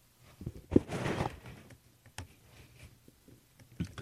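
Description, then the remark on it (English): Fast typing on a computer keyboard: a dense flurry of quick key clicks early on, then a few scattered taps. The clatter is fairly quiet, with no talking. “You might be the madman in the garden, but I'm the madman on the QWERTY.”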